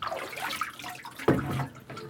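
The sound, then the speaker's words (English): Water sloshes and trickles as a pot of milk is lifted out of a water bath during cheesemaking, with a sharper splash midway followed by running drips, fairly loud. “Lift that out. That was my water bath.”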